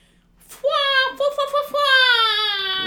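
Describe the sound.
A voice mimics a slow air horn: one long, loud, buzzy tone that sags gradually lower in pitch, briefly stuttering twice before stretching out and fading at the end.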